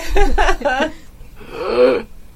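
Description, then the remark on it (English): Someone lets out a few short, strained, quiet gasps, then one longer, breathy wheezing gasp after a brief pause, like a person struggling for air. It sounds like a voice acting out the gasping. “And it's relatively quiet in here, except for this guy, like, quietly gasping.”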